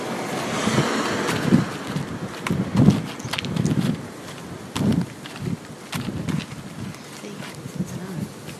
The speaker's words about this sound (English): Sorry if it's windy.